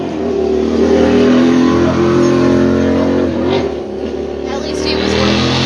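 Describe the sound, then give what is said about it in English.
A motorcycle engine roars loudly, revving steadily with its pitch dipping and climbing again as it passes, while muffled voices sit faintly underneath. “Oh, then he has to rev it up.”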